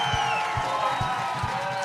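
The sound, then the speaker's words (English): A live audience on their feet cheers loudly in a dense, continuous roar, with steady rhythmic thumps underneath, like stomping or clapping, filling the whole moment. “The crowd, wild, on their feet. They're absolutely loving him.”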